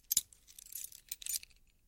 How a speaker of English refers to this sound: The walk up the stairs to my apartment seemed to take hours. I inserted the key,